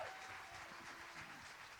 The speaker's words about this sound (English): Somebody give our worship leaders a big round of applause.